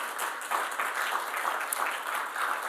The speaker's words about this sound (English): You can clap for him.